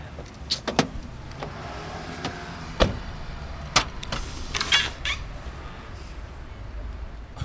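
A car trunk being opened: a series of sharp mechanical clicks and clunks, spaced irregularly over a low steady hum, with a brief whirring latch sound in the middle.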